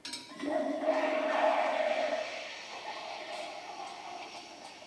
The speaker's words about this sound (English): So I'm gonna make a milk drink and an espresso, just because I can. So that's a 24 second pull.